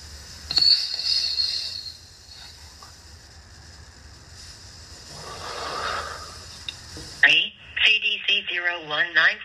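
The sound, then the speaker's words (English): A phone call being placed to a business in Nashville, with bright electronic dialing and ringing tones on the line, followed by a short burst of voice over the receiver near the end. “I'll call the one with better reviews because I can actually see their whole phone number on the screen.”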